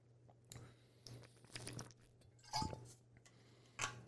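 Quiet mouth sounds of someone drinking water, with a few soft gulps and wet swallows spaced irregularly over a faint steady hum, and no talking.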